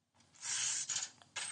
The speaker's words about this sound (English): The machine. Money. The cash register.